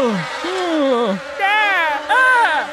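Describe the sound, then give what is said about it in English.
Loud buzzing of killer bees, a continuous droning whine that wavers and swoops up and down in pitch for a few seconds, with no talking over it. “As a matter of fact, given the blow we dealt the witch this morning, I'd wager the ghost of said killer bees should be released from the witch's power about now.”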